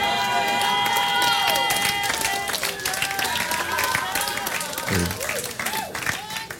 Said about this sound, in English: That's why I didn't faint when you applauded me.